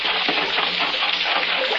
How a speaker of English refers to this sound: There's the river.